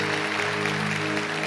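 crowd, audience applause

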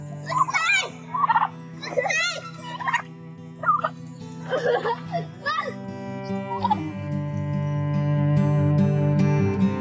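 bird, wild turkeys gobbling

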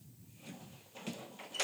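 household object, door being opened

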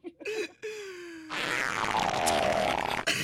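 human body sound, fart

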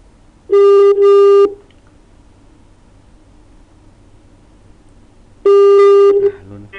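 signal or alarm, telephone ringing tone

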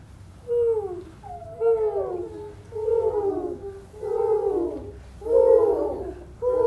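bird, owl hooting

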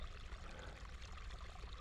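nature, flowing water trickling

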